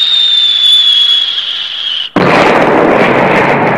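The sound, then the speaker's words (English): A high, steady whine for about two seconds, then a sudden, very loud explosive blast that keeps roaring in a dense, crackling wall of noise, as if several detonations overlap: copper core fragment missiles crashing into a tower turret, the first followed immediately by 15 more. “15 other missiles followed immediately after.”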